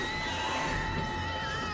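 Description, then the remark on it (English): Matthew Broderick screams in a shrill, high-pitched panic in a film scene where Zilla babies block a hallway, one loud sustained cry lasting nearly two seconds with no pauses. “And you get one of the funniest screams from Matthew Broderick.”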